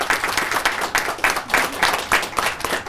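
A crowd applauds steadily for an organizer of the day's events, many hands clapping in a dense, bright patter that holds at a fairly even level for a few seconds, with no voices heard.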